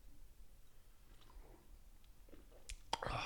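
Quiet mouth sounds of someone sipping coffee: soft lip smacks and small clicks, then a brief, slightly louder slurp near the end. No talking.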